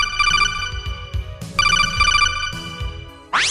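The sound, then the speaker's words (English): A telephone rings for an incoming call with a bright electronic warbling tone, repeating in three close bursts, loud, followed by a quick rising sweep at the end. No one speaks. “And anyways, look, we're taking listener calls. So let's go to the phones.”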